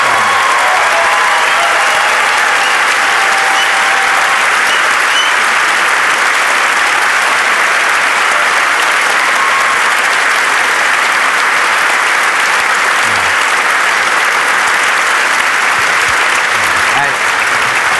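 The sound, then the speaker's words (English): Loud, sustained audience applause fills the whole stretch, a dense steady wash of clapping hands with no pauses and no one speaking over it. “You should give a huge round of applause for these people who are just wonderful.”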